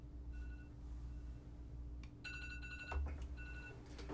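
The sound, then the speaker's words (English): A phone alarm chimes in short, repeated bursts of bright electronic tones, fairly soft, over a steady low hum with no one talking. “We have a random alarm going off.”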